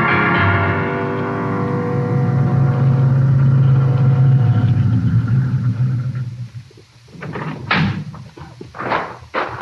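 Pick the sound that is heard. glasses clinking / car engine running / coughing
car engine running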